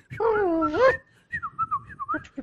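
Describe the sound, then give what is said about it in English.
A person whistles an imitation of R2-D2 from Star Wars: a rising, buzzy warble, then a quick run of chirpy, sliding whistled bleeps, fairly loud, with no talking. “They're having a little hug, and … starts doing R2-D2 yeah, noise. Whistling.”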